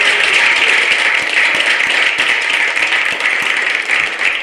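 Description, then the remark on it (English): A steady burst of applause from many hands clapping at once, dense and loud throughout, with individual claps blurring into a continuous crackling roar and no voices over it, given for birthday shout-outs to three artists. “Let's give them claps.”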